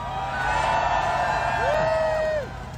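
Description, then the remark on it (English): A crowd cheers loudly and steadily for a couple of seconds for students from the University of Guelph, with high whoops and shouts rising over the roar before it quickly falls away. “And I know you're cheering for the students, not the university.”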